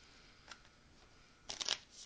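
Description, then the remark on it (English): A deck of playing cards being riffle-shuffled: a faint flick, then a quick, crisp flurry of rapid snapping cards lasting a moment, fairly quiet, with no voices. “This is me shuffling the deck of cards, completely random.”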